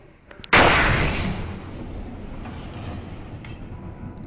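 A sudden, loud blast from the shock wave of a meteor exploding in the atmosphere over Russia in 2013 cracks out after a brief quiet moment, then fades into a long, deep rumbling roar that lingers to the end. No one speaks.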